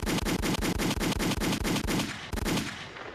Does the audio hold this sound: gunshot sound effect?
yes